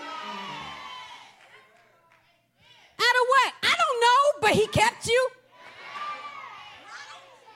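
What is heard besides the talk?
audience shouting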